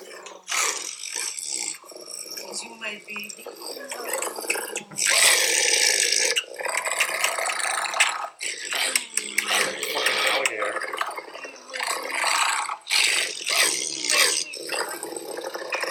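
A dog lets out loud, guttural roaring grunts in repeated rough bursts, with brief pauses between the throaty outbursts.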